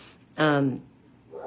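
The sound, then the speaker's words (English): A single loud dog bark with a slightly falling pitch rings out briefly, then quiet background follows with a faint sound at the end. “you guys hear Star barking”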